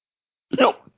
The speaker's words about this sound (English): The hell was that? My hiccuburp. It was a burp. A hiccuburp.